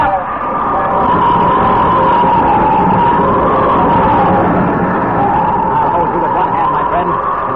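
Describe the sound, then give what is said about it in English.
A loud alarm bell, rung by someone in trouble, rings continuously for the whole stretch, its tone rising and falling slowly in a wavering wail, insistent, with a dense rumbling noise underneath. “It's the bell. Jimmy's in trouble. He's ringing the bell.”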